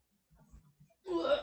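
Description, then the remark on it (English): A person trying to burp while getting up lets out a stifled, muffled burp as a few low gulping pulses, then ends in a short, louder strained burst of noise. “Trying to burp and get up at the same time.”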